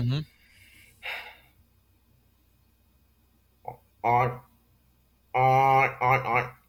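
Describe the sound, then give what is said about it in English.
A voice imitates a pig's oink the way it is made in Portuguese, with short, grunting snorts and gasps in separate bursts, breathy pauses between them and a longer, louder vocal burst near the end. “How would you make a pig sound in Portuguese?”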